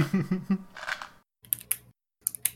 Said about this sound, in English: Shouldn't be clicking my pen. You guys will hear that.